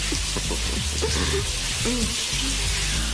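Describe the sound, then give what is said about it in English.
A steady, hissing rush of shower water runs continuously throughout, with faint muffled voices of people in the shower murmuring underneath the spray. “Hey, they're in the shower.”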